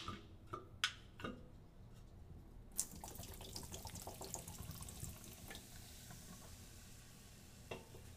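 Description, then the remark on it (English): A few sharp clinks and taps, then liquid is poured out in a steady splashing stream for several seconds, with no one talking. “Hold on, let's pour one out.”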